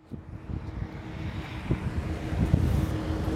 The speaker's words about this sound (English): It was another phone recording. It was a little windy, and I didn't have a windscreen for my phone microphone. So bear with the first part of it when we're in the windy area of the streets in Buffalo, New York.